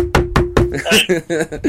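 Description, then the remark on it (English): Three quick, evenly spaced, fairly loud knocks on a wooden surface, followed right away by a man talking. “Knock on wood if you feel me.”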